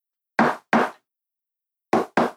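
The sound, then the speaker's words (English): Four sharp knocks on a door in a deliberate secret-knock pattern: two quick raps, a long pause, then two more. Fairly loud, with silence between and no one speaking. “Broomy's going to do the secret knock from the howling dog on the door.”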